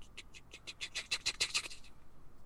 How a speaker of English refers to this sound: Like, we've heard a little bit of, like, squeaking. You can hear, like, little claws on wood. So I think they have to be rats or mice or something.